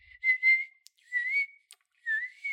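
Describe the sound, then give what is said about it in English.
A person whistles a short tune in three wavering, breathy phrases, moderately loud, with small clicks between phrases and no talking. “Yeah, it's like a flute, but I'm whistling.”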